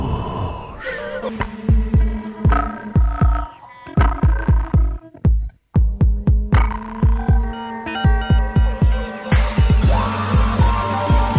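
A pop-rock song plays with a heavy, steady drum beat and thumping bass under layered guitar and synth tones, briefly cutting out for a moment midway before the groove returns.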